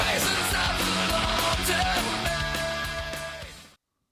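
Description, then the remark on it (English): A singer screams over loud, dense rock music with pounding drums and distorted guitars, the harsh vocal holding steady before the whole song cuts off abruptly into silence. “Not even one of his best screams.”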